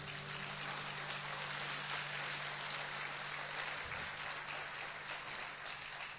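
An audience applauds, a dense, steady wash of many hands clapping that holds at an even level for the whole stretch, with no voices over it.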